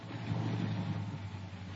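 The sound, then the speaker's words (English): A car engine rumbles steadily at low revs as the car slows down, a continuous hum settling into an idle with no voices over it. “Oh, slow down, dear.”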